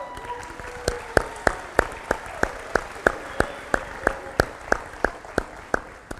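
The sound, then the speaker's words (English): An audience claps for the speaker's wife on their 29th wedding anniversary, in steady unison, sharp evenly spaced claps about three per second over a soft wash of scattered clapping. Nobody speaks. “I just want you to give her a round of applause for putting up with me for 29 years.”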